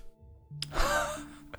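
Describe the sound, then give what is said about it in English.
A person imitates a sharp, breathy gasp for the character Magdor, a single drawn-in rush of air lasting about a second, fairly loud, with no talking. “I was going to say, this is, like, Magdor takes gasps.”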